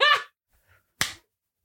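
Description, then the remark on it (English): One sharp, loud hand clap with a quick decay, preceded by a brief voiced sound and a faint rustle, then silence. “I'm going to clap real quick.”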